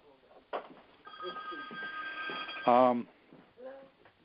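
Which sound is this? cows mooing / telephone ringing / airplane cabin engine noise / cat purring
telephone ringing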